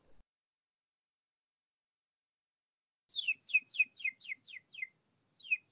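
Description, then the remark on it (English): A person imitates bird calls: after three seconds of silence, a fast run of about eight sharp, descending chirps, a brief pause, then two more, clear with no talking. “I can do bird calls.”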